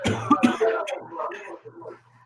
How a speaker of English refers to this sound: All right. Cough break. Oh, cough break number two.